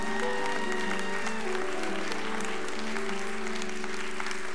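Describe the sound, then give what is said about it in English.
An audience claps steadily for several seconds as a clap to the Lord, a dense wash of many hands with a faint sustained musical tone underneath. “And anybody who dared to agree with that said, come on, can we give a good clap to the Lord today?”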